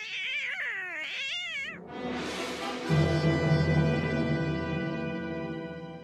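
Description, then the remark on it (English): A cat lets out a loud, drawn-out, wavering meow in a Catwoman voice clip, then a burst of hissing noise gives way to a dense, sustained sound that fills the rest. “Obviously, Catwoman voice there was a bit of a giveaway, but I thought the cat would really help you in that situation.”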